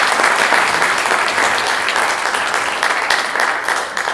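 Steady, dense applause from an audience, a loud continuous patter of many hands clapping at an even level for several seconds, with no voices over it.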